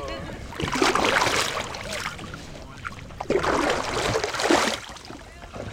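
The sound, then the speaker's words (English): Water sloshes and splashes in two broad surges as oars pull a small boat out into the sea, fairly loud, with faint voices murmuring in the background. “So as he is rowing us into the sea, I can see the kind of dark brown, kind of yellow water.”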